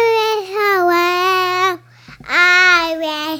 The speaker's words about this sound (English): I don't know what you're saying, you babbling monkey, but I know you're talking.